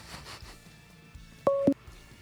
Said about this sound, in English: Oh, there's a phone call.